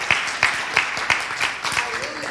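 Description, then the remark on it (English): An audience claps in a steady, even rhythm, about seven crisp beats in two seconds, with a low murmur of voices running underneath. “You can clap all you want to clap.”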